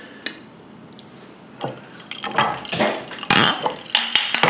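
Bright clinks and jingles of ice knocking against glasses of gin, sparse at first and then busier and louder, with sloshing liquid and small glassy taps; nobody speaks.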